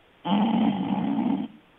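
One long, rumbling snore lasting just over a second, thin and muffled as if coming through a phone line, with no voices around it.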